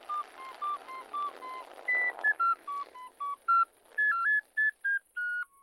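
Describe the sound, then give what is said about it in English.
A breathy melody of short tooted notes played on an ocarina, mostly steady pitches stepping up and down in a quick tune, played alone with no talking. “I'm just playing my ocarina, buddy.”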